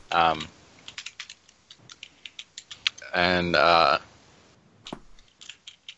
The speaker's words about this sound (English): Everybody's typing.